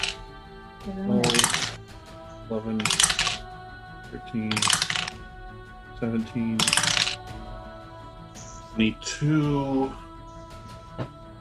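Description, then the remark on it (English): Dice clatter and rattle across a hard table in several quick bursts, fairly loud, while people talk quietly between and under the rolls. “Also, how do you not have enough dice? I've seen your bag of dice.”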